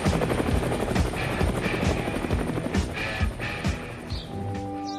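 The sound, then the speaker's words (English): A helicopter's rotor thuds in a steady rapid pulse with a whining engine, loud, the sound thinning slightly toward the end as it moves off, as a crew flies home from the crater at the top of Mount Edgecombe in Sitka, Alaska. “As thick black smoke began to bellow skywards, the crew got back in the chopper and headed home.”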